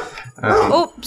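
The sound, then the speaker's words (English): A dog barks once at someone knocking on the door to deliver a package, a loud, harmonic bark that rises and falls over about half a second, followed by a sharp onset of another sound at the end. “Somebody's knocking on the door, so my dog is barking.”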